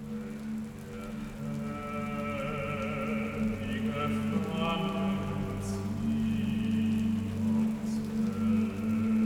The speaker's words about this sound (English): In the morning it's already raining. The ground is wet and covered in mud. Outside, you're constantly standing in filth. The rain doesn't let up, and the sky, too, is overcast.